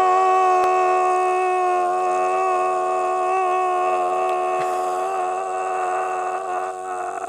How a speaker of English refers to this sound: Definitely need a lot more screaming. Yeah, don't worry. Screaming. I'll do it.